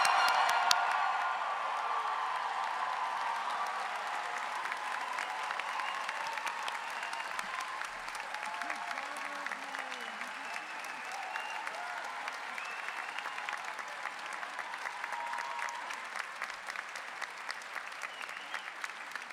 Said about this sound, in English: Please join me in a very big round of applause for the 2023 JD graduates. Congratulations.